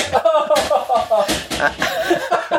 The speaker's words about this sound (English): And his door, the door frame has just fallen off. Yes, you've completely broken your door. It came clean off. No, it comes off all the time.